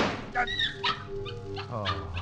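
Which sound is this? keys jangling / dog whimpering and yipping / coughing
dog whimpering and yipping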